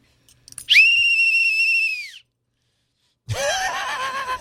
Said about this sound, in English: It says, don't you see, Department of Homeland Security on it. So I blow this whistle.